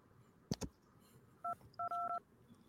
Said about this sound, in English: Yeah, can you guys hear this phone?